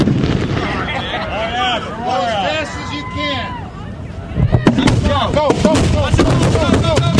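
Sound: fireworks exploding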